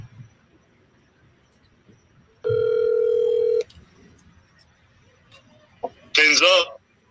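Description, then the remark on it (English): A phone call connecting to a guest at his home in Indianapolis: a steady electronic ring tone sounds for about a second, followed a few seconds later by a brief, loud warbling chirp from the line. “So let's get Ted on the phone.”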